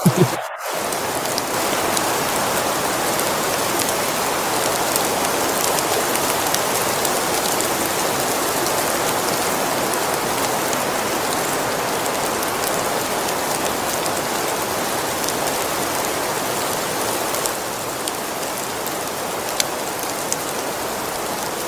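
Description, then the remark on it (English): A blizzard of falling snow in Connecticut makes a dense, steady hiss much like heavy rain, continuous and fairly loud throughout with no voices, only a brief dropout at the very start. “I believe this is what you call a blizzard.”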